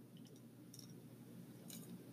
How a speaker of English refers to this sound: I'm gonna sip on my coffee real fast because it's almost done.